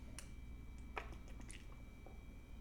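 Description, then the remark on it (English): Someone takes quiet sips of water, with a few soft wet slurps and mouth clicks over a low background hum. Nobody speaks. “Hold on, I'm sipping here my my what are they called? They're free and clear water.”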